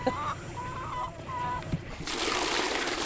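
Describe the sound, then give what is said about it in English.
Chickens cluck softly for a couple of seconds, then a steady, fairly loud rush of water starts pouring as the chickens' water troughs are filled, continuing to the end. “Filling up the water troughs for the chickens and the feed troughs, and then we're gonna get their eggs.”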